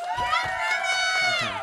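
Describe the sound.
An audience cheers loudly, with a sustained high-pitched whoop ringing through the whole moment over a bed of excited voices; any applause is buried under the cheering.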